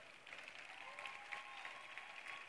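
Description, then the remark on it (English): An audience claps steadily throughout, a dense, even patter of many hands at moderate loudness with no clear beat. Faint murmuring sits beneath the applause. “You could have clapped.”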